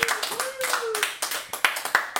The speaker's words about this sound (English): Can I get a round of applause for this? I mean, come on.